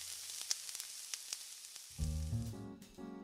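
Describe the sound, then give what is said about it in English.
Ella Mae's fried chicken frying in a pan on the stove: a steady hiss of sizzling dotted with sharp crackles and pops. Partway through, low sustained tones rise up and partly cover the frying. “But no matter how Joseph James tried to organize his sermon, his speeches were no match for the real event of the morning, the thick, inviting scent of Ella Mae's fried chicken crackling on the stove.”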